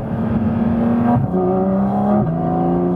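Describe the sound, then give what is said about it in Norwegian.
A car engine revs steadily with rising pitch, then drops abruptly twice as the automatic gearbox shifts up, each shift followed by a new climb. Loud, continuous, no voices. “Det jo automatgir, så den syr på pekte. Men jeg tror egentlig ikke man trenger manuell når du har dette her. Det var to gir.”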